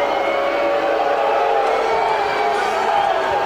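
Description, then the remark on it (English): A huge stadium crowd at a football match roars with sustained, loud booing late in the game, a dense wall of voices rising and falling without a break, overwhelming throughout. “As the crowd seething with emotion late in this game. Booing. Vociferously.”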